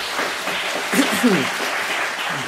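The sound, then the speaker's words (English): A crowd gives a speaker another round of applause after his evening message, with dense, steady clapping that holds at an even loudness throughout, while a few faint voices and cheers rise briefly over the noise. “You want to give him another round of applause?”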